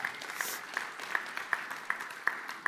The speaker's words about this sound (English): In fact, we have a sister church that we launched out starting tonight on campus at UT, Moon Tower Church, tonight. Yeah, y'all give that a round of applause.